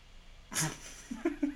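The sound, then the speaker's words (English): A female dog whines to go outside after seeing another dog outside: a sharp, breathy yelp followed by a few short, high-pitched whimpers in quick succession, with no talking. “Yeah, because she's crying like a little baby. She does this every night. She sees one dog outside, and then she's like, I gotta go outside right now.”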